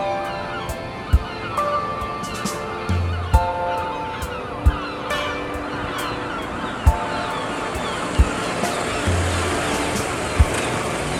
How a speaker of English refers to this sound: Atlantic waves lick at the shore. Seagulls screech and swoop.